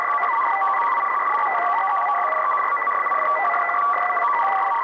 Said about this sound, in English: In the case of noise or Morse broadcast, after the header, the message is sent out in Morse code or a group of tones known as a data burst.